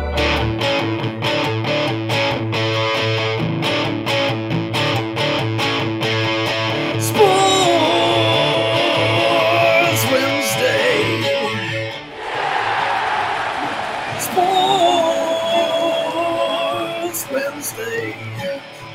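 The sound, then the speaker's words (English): A loud, distorted electric guitar plays steadily, moving from thick sustained chords into a lead line with wavering, bent notes before returning to heavy strummed chords. “The electric. I don't think you could ever go back to the acoustic.”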